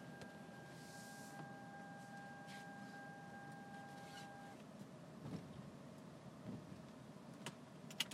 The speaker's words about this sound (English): Yes, that's my car, by the way. Hold on one second.